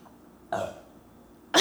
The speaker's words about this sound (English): That was a great burp. Thank you.